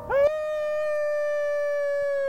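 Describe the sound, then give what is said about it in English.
A dog named Sesame and a person howl together over the city from a hill, one long, sustained note that swoops up at the start and then holds steady, fairly loud, with no talking. “It felt good to howl over the city, with voices that were banding together when our bodies could not.”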